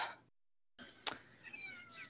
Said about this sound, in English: I heard a slight meow, but then I don't hear one.